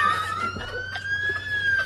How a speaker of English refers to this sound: Let me turn on the siren.